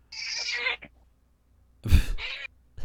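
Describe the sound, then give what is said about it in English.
A cat meows twice: a drawn-out, wavering meow, then after a short pause a rougher, shorter one, with no talking around it. “Hello, cat.”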